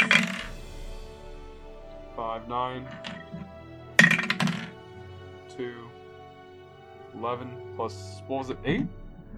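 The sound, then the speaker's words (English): Two bursts of clattering as dice tumble across a hard table, a few seconds apart, with voices talking between and after the rolls; the roll comes up 11. “I got 11 on the dice.”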